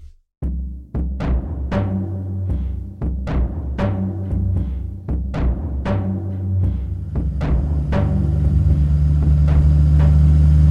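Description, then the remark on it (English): A car engine drones steadily with a low rumbling hum during a drive, in a scene from the Adventures of Willy and Wendy series, punctuated by a series of sharp, evenly spaced knocks. The engine grows fuller and steadier toward the end, with no one speaking. “This scene is when Willy and Wendy are in the car on their way to their first ever detective job.”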